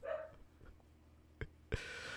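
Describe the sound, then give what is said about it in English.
A dog gives one short bark, heard over a person's microphone, followed by a couple of sharp knocks and then a steady hiss of background noise. No one speaks. “I can still hear your dog.”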